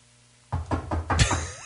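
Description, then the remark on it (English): Four firm knocks on a door in quick, even succession, with the last rap landing a little harder and leaving a brief ringing tail. No one speaks. “You might get a knock at the door.”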